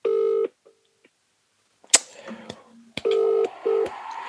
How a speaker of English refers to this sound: It's ringing.